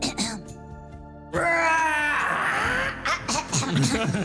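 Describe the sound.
A person imitates a dragon's roar with a loud, sustained, strained growling cry lasting about two seconds, rising and rasping, followed by brief laughing and voices.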